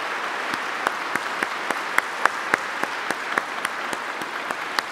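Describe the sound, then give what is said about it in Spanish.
An audience applauds steadily for a parish prayer group, standing, who attended a weekend retreat, a dense wash of many hands clapping with a few sharper claps standing out at a regular pace, moderately loud and with no voices heard. “Le damos un fuerte aplauso a ellos.”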